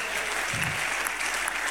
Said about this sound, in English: Give God a better clap offering.